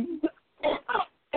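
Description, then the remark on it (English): A pair of short, breathy sneezes in quick succession, each a sharp noisy burst, preceded by a brief low vocal sound and followed by the start of another. “Bless you.”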